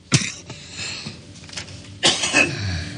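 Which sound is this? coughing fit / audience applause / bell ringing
coughing fit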